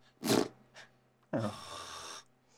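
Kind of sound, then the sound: vocal imitation, voice imitating snoring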